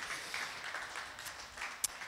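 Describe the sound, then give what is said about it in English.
Steady applause from an audience for the volunteers, a dense, hissy wash of many hands clapping at once that holds fairly even throughout, with one sharper clap standing out near the end. “Come on, give all our volunteers a big round of applause, guys.”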